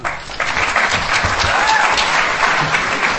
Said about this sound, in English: Okay, it's very unusual for a university lecturer to get a clap before he starts, and it's actually very unusual for a university lecturer to get a clap after they start,